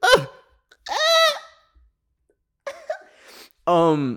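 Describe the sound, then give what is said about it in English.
Several abrupt, voiced hiccups, some stretched into short squeaky vocal yelps, separated by brief silences at irregular intervals. “And like, oh my God, I have hiccups that are kicking my ass right now.”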